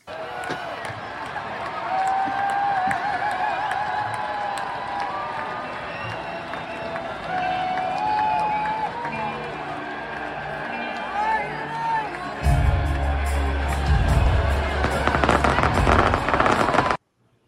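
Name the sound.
fireworks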